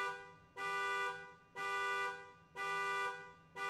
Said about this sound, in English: Verga and a few other neighbors said they heard a car alarm go off about 2 in the morning.